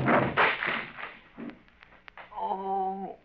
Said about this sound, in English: Look there, you broke Lum's chair all to pieces.